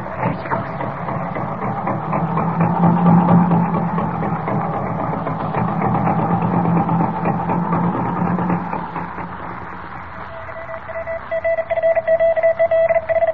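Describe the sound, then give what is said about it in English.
An old car engine, started with its key, rumbles and clatters as it starts and keeps running steadily, a low mechanical drone; near the end a higher whine and rhythmic pulsing take over. “Hope I can get this crate started. There she goes.”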